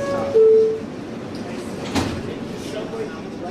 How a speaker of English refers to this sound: In a World Trade Center bound E train, the next stop is 14th Street. Stand clear of the closing doors, please.